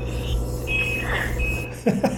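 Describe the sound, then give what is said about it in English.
A washing machine's end-of-cycle signal: a few steady electronic beeps at a fixed pitch over a low hum, followed by a person starting to talk. “Oh, laundry's ready.”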